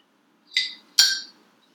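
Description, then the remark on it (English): Two bright glass clinks about half a second apart, each ringing briefly before fading, clear with no talking, like glasses touched together in a toast. “So I want to cheers for it's mine shout.”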